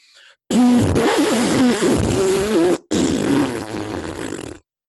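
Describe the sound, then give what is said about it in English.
A loud, sputtering raspberry made with the tongue imitates a fart, rattling for over two seconds, pausing briefly, then continuing in a slightly softer, buzzing burst. “That was my tongue. Round of applause. I was making booty hole noises because that game's gonna be booty hole.”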